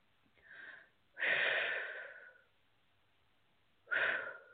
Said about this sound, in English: So just FYI, I do a lot of deep breathing to help move the processes along. So that's going to be happening a lot, I foresee, in this session. Apparently, I need it.